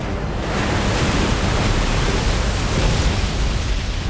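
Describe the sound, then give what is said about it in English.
A tidal wave bursts through throne room walls: a loud, steady roar of rushing water surges continuously, like a great wave crashing through, dense with no pauses and no voices. “A tidal wave burst through the throne room walls and shot into Toyotama's cage.”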